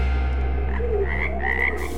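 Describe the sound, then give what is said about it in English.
A dense chorus of frogs croaking continuously in a toilet, overlapping calls forming a steady, loud throbbing drone with higher chirping notes rising above it, no voices present. “Oh, fuck, the dunny's full of frogs.”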